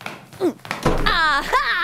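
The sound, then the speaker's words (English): A door is barged open with a dull thud, followed right away by a loud, excited voice exclaiming "Aha!" “was barging down doors and saying, aha!”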